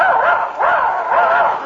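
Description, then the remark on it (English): A human voice imitates a dog, giving three drawn-out, whiny yelping barks in quick succession, fairly loud, with a whimpering rise and fall to each. “Now he thinks he's a dog.”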